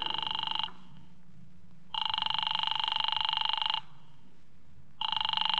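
An old telephone rings in long, rapidly trilling bell bursts separated by short pauses, about three rings, loud over a faint low hum, as a call to Diamond's office goes unanswered.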